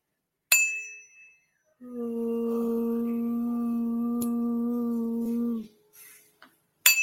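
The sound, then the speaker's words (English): A small hand bell rung during a card reading strikes once with a bright, quickly fading ring, followed by a long, steady humming tone lasting several seconds, then another sharp ring at the very end. “Oh, I didn't even ring my bell.”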